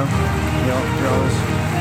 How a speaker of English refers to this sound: Can we get a little crowd noise like we're in the locker room?